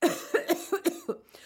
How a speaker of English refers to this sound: I'm going to do my fake cough now. And okay. I think you'll be like, wow, that seems real.